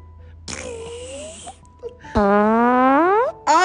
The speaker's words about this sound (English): Oh, it was a twin fart. I heard it. I really heard it.